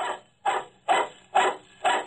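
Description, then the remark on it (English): A big, shaggy dog barks five times in a steady, evenly spaced rhythm, each bark loud with a gruff, rough edge, no voices around it. “The dog was big and shaggy. I first noticed him as I put my car into the garage. He was making like a tough guy”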